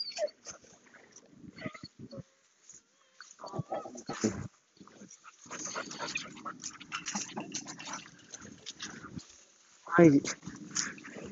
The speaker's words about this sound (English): Look, the poor dog wants a friend.